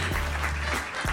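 A brief burst of applause for the show's producer, hands clapping in a dense, steady patter at moderate volume, with a low hum underneath and no one speaking.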